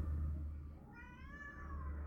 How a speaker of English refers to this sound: I don't need sound effects of a cat yelling in the background, apparently. I think that was your real cat.